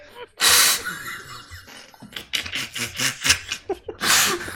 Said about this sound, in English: God bless you.